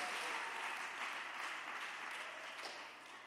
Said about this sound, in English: Can we clap our hands and thank the Lord for all that he's doing? Can we clap our hands and thank the Lord?